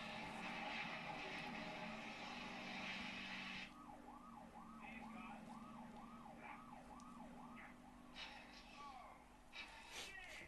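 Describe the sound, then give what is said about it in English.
An emergency vehicle siren wails in quick, repeating rising-and-falling sweeps, loud, cutting in after a few seconds of heavy rumbling noise and continuing over a busy, noisy background. “On with the siren again.”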